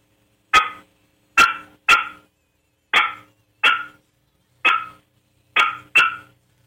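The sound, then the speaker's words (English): A turkey hen's alarm putt, a warning call meaning danger, imitated in a demonstration, likely on a game call: eight sharp, loud, clipped notes at uneven intervals, some paired, with no talking. “Here's the alarm putt.”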